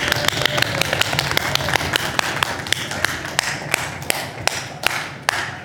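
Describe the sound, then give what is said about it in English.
An audience at a church stomps on the floor to honor a man, in a rapid, uneven stream of sharp thuds and taps, dense and fairly loud throughout, with a low rumbling undertone and no voices. “I'd like us to stomp so that he's like, what on earth is going on out there”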